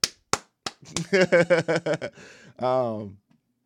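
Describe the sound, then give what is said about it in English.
Four sharp, evenly spaced hand claps ring out alone in praise of Pat Will doing great. A voice then follows with a quick run of rhythmic, pitched vocal syllables ending in a longer held note. “Clap it up. Clap it up.”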